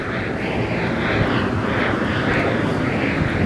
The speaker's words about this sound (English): There's one of Sherman Oaks' great jet air fighters from the Sherman Oaks Angels. They just did a flyover. They're about an hour late. They were supposed to be here to start the match.